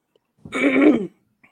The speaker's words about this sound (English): So, Lord, I was clearing my throat.